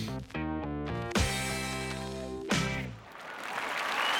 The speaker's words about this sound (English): And listen to that noise! The capacity crowd are on their feet for the workhorse that is Son of a Plumber, the Alaskan Dream, Rusty Croods!